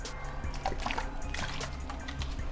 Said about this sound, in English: I'm trying to think, hold on, let me hit this water real quick.